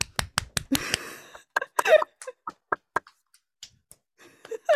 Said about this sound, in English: I'm clapping.